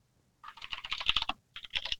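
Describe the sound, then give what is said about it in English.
Rapid typing on a computer keyboard with many crisp key clicks in a quick, uneven rhythm, two bursts separated by a brief pause, fairly loud, with no voices. “You working on a paper over there? Yeah, you got or your keyboard clicking, clacking loud enough?”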